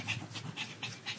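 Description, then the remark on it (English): A dog pants rapidly and steadily right up against the microphone, five quick breathy huffs in a regular rhythm with no talking over them. “Yeah, are you against that ear again, dog?”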